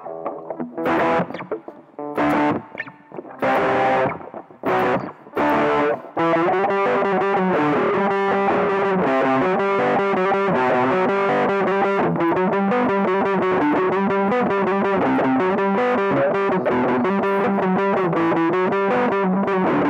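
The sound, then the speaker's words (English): Heavily distorted electric guitar, starting with a few choppy, stop-start stabs and then settling into continuous, dense, buzzing riffing that stays loud throughout. “Switch to some distortion, more heavy sounds.”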